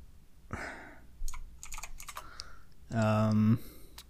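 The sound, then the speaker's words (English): Crisp clatter of typing on a clicky computer keyboard, a quick run of sharp keystrokes, with brief bursts of voice-like sound before and after. “You guys are going to hear my clicky keyboards again.”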